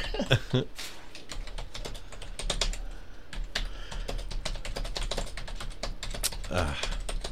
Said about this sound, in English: Do you hear this? He's typing awful aggressive.